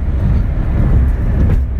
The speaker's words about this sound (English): It's going so fast. If anyone's in his way, beeps them. It's going so fast that the car sounds like a dryer or a washing machine on full speed once you're up there.